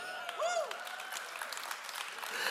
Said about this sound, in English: And y'all didn't clap so loud on that one. Because you're like, well, I don't know whether to clap if I am one or not one.